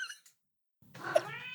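A cat lets out a single drawn-out, insistent meow, fairly loud, after a short faint chirp and a moment of silence; she has been left in the room and wants to be let out. Nobody speaks.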